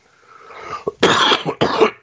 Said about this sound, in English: Excuse me. Somehow it seems like I come up with a little cough this morning.